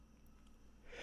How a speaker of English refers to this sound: Who had a sneeze